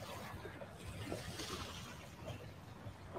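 A steady wash of ocean surf, with a soft swell building briefly in the middle, heard at a low level with a breezy outdoor hiss and no one talking.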